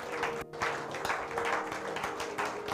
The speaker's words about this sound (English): If you're not a leader, I want you to stand. And I want you to clap your hands for them. I want you to celebrate them.